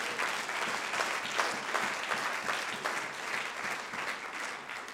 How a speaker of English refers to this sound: Oh, somebody clap your hands unto the Lord.